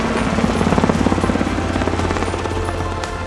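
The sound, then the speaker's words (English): A helicopter's rotor thumps in a steady, rapid chop over a constant low engine drone, loud throughout with no voices, as it carries a sick climber down from a camp at about 7,000 meters on Mount Everest. “A helicopter then took the sick man down the rest of the way.”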